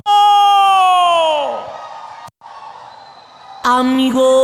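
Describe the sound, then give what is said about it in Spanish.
A Mexican grito: a loud, drawn-out yell that slides downward in pitch, followed by a quieter wavering stretch and then another forceful burst of shouting near the end. “quiero que se escuche ese pinche grito mexicano.”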